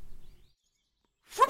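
A golf club swishes through the air and strikes the ball with a single sharp crack, slicing the shot, a brief loud whoosh-and-hit after a quiet pause with faint low rumble at the start.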